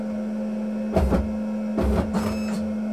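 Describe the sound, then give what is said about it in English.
A braille embosser's paper-feed mechanism whirs and clatters in three short mechanical bursts over a steady low electrical hum as the embosser is set to form feed and offline to spin the paper out backwards, with no one talking. “I'm actually going to spit it out backwards, though, and to do that I do a form feed and offline, which will spin it out backwards.”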